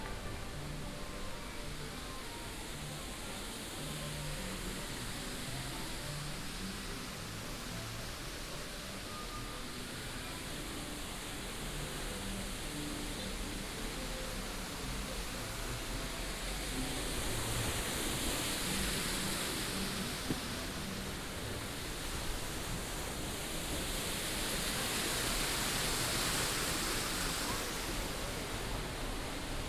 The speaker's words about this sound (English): So enjoy the queue, the sound of the waterfall as we walk through the outside.